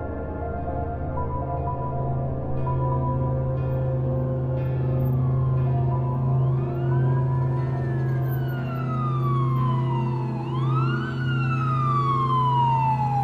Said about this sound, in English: I woke up the next morning to sirens. I opened my curtains to see if there was anything out on the street, but I saw something else instead.